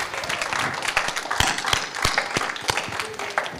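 A group bursts into applause for the person who ran a Jeopardy-style trivia game, a dense crackle of many hands with a few sharp, louder claps standing out, holding steady for a few seconds with faint voices mixed in.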